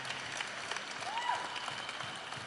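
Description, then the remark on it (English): An audience applauds with dense, steady clapping that fills the whole moment, and a brief whistle rises and falls over it partway through. “So, give the Lord a round of applause, will you?”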